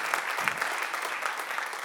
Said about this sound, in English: Can you give the Lord a hand clap for that? That's pretty awesome. That's pretty awesome.